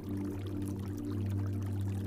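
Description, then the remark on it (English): Steady rushing of falling water and a gurgling stream, a low, continuous gurgle holding an even level throughout without any voices. “Tree frogs sing along with the gentle hush of the falling water and gurgling stream.”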